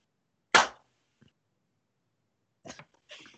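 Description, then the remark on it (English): One loud, sharp hand clap rings out and fades quickly, followed a couple of seconds later by two softer, rougher bursts of sound. No one speaks. “At the same time, we all clap separately. Okay. Person claps.”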